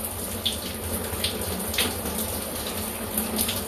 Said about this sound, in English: Like I'm in the shower now, it's 10:30.